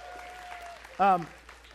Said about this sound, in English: Now, what's interesting is women are clapping. Okay. Since you're clapping, I'm going to take a sip of water.